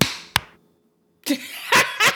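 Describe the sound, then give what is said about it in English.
A loud group clap lands unevenly as a ragged burst followed by a second sharp smack. A short silence follows, then a noisy stir of voices and reactions. “No, but in actuality, on the count of three, let's just do one big clap.”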